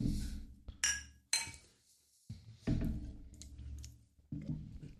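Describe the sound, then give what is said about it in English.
Glasses clink together in a toast, a couple of bright, ringing taps in quick succession, followed by softer clatter and thuds of glassware being handled, with no talking. “That's a nice pour. I'll take a little as well. Went a little overboard there. Oh, well. Yeah. Cheers.”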